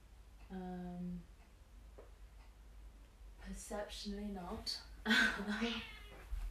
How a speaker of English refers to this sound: My cat has just woken up from a nap, so if she's meowing, that's her.